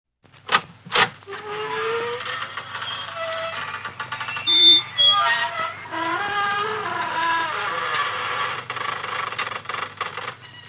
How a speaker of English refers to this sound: Good evening, friends of the creaking door.